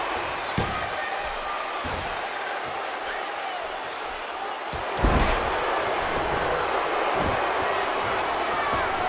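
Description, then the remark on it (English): In a WrestleMania main event between Bam Bam and Brutus the Barber Beefcake, a wrestler is body slammed onto the ring mat with a back body drop and a spine buster: a few heavy, booming thuds, the loudest about halfway through, over a constant roar of crowd noise. “And a back body drop. And a spine buster.”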